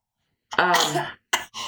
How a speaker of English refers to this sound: Oh, dear. Bless you.